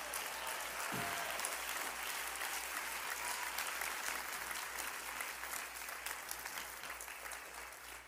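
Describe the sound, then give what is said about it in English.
An audience bursts into sustained applause, a dense, steady wash of clapping that holds at full strength for about eight seconds before starting to thin slightly at the end. “And I don't know why y'all are not clapping.”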